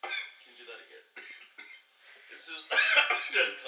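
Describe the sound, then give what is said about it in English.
A person coughs and clears their throat repeatedly, with rough, rasping bursts that grow louder and harsher toward the end. “I'm done coughing my guts out.”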